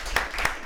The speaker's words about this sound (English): It's our year anniversary, like on the low, like on this show. Here, so. Let me get a hand clap. Thank you.